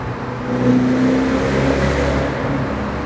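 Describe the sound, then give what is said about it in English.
A twin-supercharged car engine with small centrifugal superchargers pulls hard under acceleration in a tunnel, its exhaust note droning loud with a steady rising growl and a faint supercharger whine, sustained for a few seconds with no talking. “It's such a clean exhaust note as well.”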